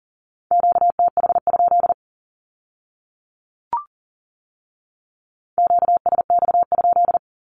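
Two rapid bursts of Morse code beeps sending a Q-code at 40 words per minute in a steady, clear tone, separated by a quiet pause broken by a single brief click.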